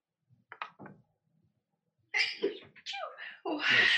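A few faint taps, a pause, then a sudden loud sneeze, with a second forceful sneezing burst following right after.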